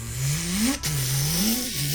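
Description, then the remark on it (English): Three trucks rev and accelerate as they move across a street toward a gun store, engine pitch climbing steadily, dropping briefly as if shifting gear, then rising again in a loud, continuous roar with no voices. “Three trucks just kind of move with an speed as they're moving across the street towards the gun store.”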